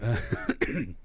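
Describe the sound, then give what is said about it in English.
A short burst of throaty coughing: two quick harsh hacks with a raspy, throat-clearing quality, heard alone without any speech. “As I just coughed up a tape break.”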